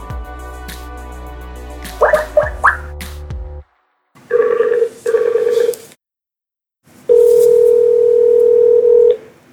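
Telephone keypad tones beep in a quick burst, followed by two ringback tones and a longer steady ring tone, each a loud, even electronic hum separated by brief silences.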